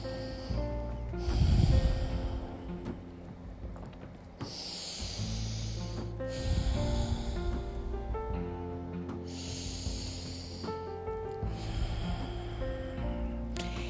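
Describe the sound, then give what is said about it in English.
Three slow, deep breaths, each a long airy whoosh of inhaling and exhaling, spaced evenly over soft sustained music with no talking. “And now, keep breathing. Take three big breaths.”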